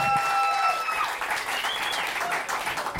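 A comedy club audience breaks into sustained applause welcoming the first comic to the stage, a dense wash of clapping with a few high whistles and cheers rising above it, steady and loud throughout.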